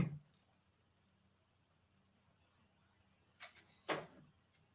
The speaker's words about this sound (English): He like, sits in the ring. He's got to grab his chair. He's got to grab the chair.